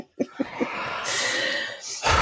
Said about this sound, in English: Heavy breaths.